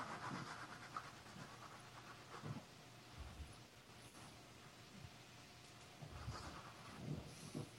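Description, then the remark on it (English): A female dog pants steadily as someone plays with her, with soft shuffling and bumps as she moves around, over a low continuous background hiss and hum. No one speaks. “messing with the dog, in case you're wondering.”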